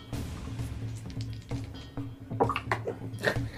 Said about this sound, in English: How do you always manage to... At least one dice bounces out every time.